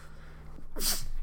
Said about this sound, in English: Sorry, sneezes